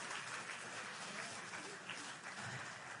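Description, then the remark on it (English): A crowd applauds steadily, a dense wash of many hands clapping at once with no pauses, holding an even, fairly loud level for the full three seconds. “Round of applause.”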